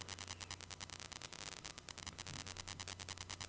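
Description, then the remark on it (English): Continuous crackling static on the line, with a steady low electrical hum underneath, broken by rapid irregular bursts of noise. It stays fairly quiet and constant throughout, with no voices. “It sounds like there's static on the line.”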